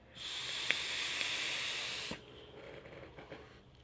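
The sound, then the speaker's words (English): A loud, steady sizzling hiss from the coil of a Recoil rebuildable dripping atomizer on a Silver Wolf Customs Sith V2LE unregulated mod, loaded with Ruby Crew watermelon lemonade e-liquid, fires for about two seconds, then cuts off into a quieter, breathy exhale with faint clicks. “Ruby Crew watermelon lemonade, recoil RDA on the Sith V2LE from Silver Wolf Customs. I'm excited to vape this.”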